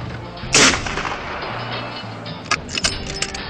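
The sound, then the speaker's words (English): Gunfire from a sniper shooting from a crow's nest: one loud, booming shot rings out over a steady rumbling background, followed a couple of seconds later by several quicker, quieter cracks in an uneven rhythm. No one speaks. “He's up shooting from the crow's nest.”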